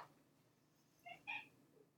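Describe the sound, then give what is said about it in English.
A black male cat gives two short meows in quick succession, soft, against faint background hum and no talking. “Fordham is a black cat, like black.”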